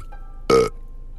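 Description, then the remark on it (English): A single short, loud burp with a buzzy, voiced quality, lasting about a fifth of a second against a quiet background. “It helps me sleep, and it gives me burps sometimes.”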